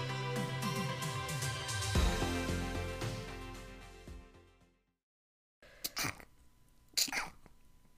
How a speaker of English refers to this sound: Bless you. God bless you.